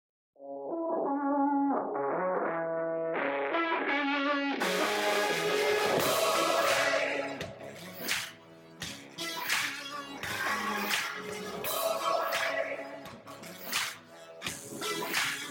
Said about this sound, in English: But this is the official copyright theme song. Here's a sample.